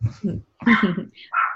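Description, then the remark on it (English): A small dog barks and yips in a few quick bursts, then lets out a higher, drawn-out whimper at the end. “And then there's the little dog to help out with that, isn't it?”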